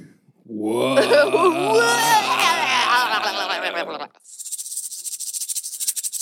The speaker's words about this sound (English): Whoa. Is that a rattler in the distance? Look out. He's coiled and ready to strike. So it's a rattlesnake.